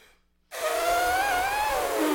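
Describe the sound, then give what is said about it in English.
Someone imitates an elephant trumpeting with their voice: after a brief silence, a loud, breathy, brassy blast with a wavering high tone that holds steady for nearly two seconds. “Oh, I've been working on this one. Ooh, that's good. Elephant. Pretty good elephant, right?”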